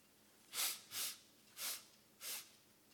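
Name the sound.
person imitating sniffing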